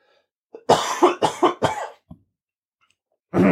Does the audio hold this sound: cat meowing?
no